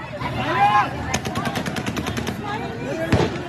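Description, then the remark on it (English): A rapid burst of gunshots, a dozen or so sharp cracks in quick succession, rings out over a crowd of shouting voices on an airport tarmac as people stream across it, followed by one more loud shot near the end. “In another, gunshots rang out as people streamed across the tarmac.”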